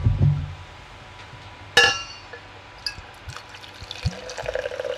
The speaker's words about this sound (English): Are you going to pour some or are you just going to sniff it? It's very brown.